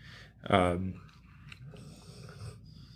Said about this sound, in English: My dog is really snoring right now, so I'll let him rest, but we'll keep going.